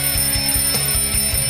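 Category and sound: household object, alarm clock ringing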